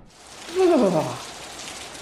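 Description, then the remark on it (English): Steady rain patters down outside on a hard surface in a continuous hiss, with a brief, louder descending whine cutting through the middle of the downpour. “But it's raining outside.”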